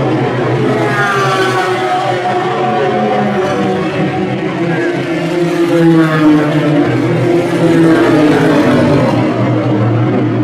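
The number 98 AMR Pro Drive Aston Martin GTE race car, driven by Pedro Lamy, roars steadily as it drives past, its pitch rising and falling through gear changes, loud and continuous over a low rumble of background noise.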